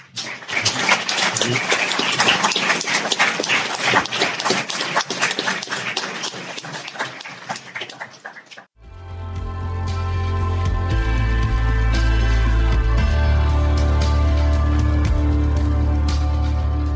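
An audience gives one more big round of applause, loud, dense, steady clapping for about nine seconds, then it cuts off abruptly and music with deep, sustained bass tones takes over.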